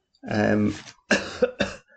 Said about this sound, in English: I'm better, but I'm still not over this stupid cough, as you can hear, which is really irritating.